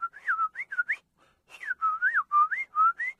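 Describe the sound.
A person whistles a quick, warbling imitation of the dawn chorus of birdsong: two bursts of rising and falling chirpy notes around a mid-high pitch, separated by a short pause, with no talking.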